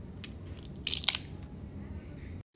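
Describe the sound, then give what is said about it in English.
A short, soft scrape of talc mineral rubbed across a glass plate in a hardness scratch test, two quick gritty strokes in the middle over a low steady background hum, with no talking. “We'll start with talc. We'll first use it to scratch the glass, then our nails.”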